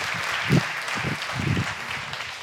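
An audience claps steadily in a round of applause to thank a guest for being there the last couple of weeks, a dense, even wash of applause that runs the whole stretch, with a few muffled voices and cheers rising briefly underneath.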